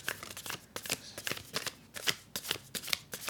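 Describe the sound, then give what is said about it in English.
A deck of cards being shuffled, with rapid crisp riffling bursts and soft papery slaps repeating steadily for a few seconds, with no one talking. “Shuffling these cards feels like an old friend.”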